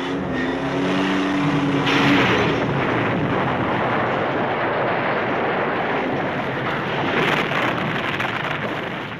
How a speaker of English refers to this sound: And then the car explodes and falls off a cliff and explodes again.